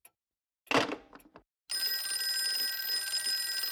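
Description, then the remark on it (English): A short clatter, then an old telephone bell starts ringing loudly and continuously, with a bright metallic jangle that keeps going to the end. “Oh, who's trying to call me?”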